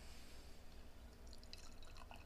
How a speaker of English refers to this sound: This is very dangerous. I'm pouring the beer right over the mic. Are you? Yeah, that is dangerous. It's cool. I guess. Oh wow. Yeah. So I got a big old head. Yeah, it's pretty foamy. It's really foamy.